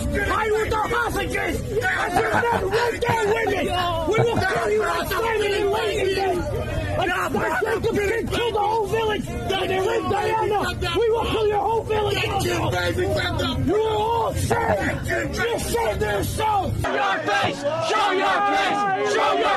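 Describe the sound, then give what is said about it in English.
A dense crowd yells and screams continuously at a street clash between pro-Hamas demonstrators and Jews in a Jewish neighborhood in Queens, New York, many overlapping voices shouting at once in a loud, chaotic roar that stays at full intensity throughout, with the low rumble thinning near the end. “A lot of screaming. Everybody's yelling and screaming, but there it is.”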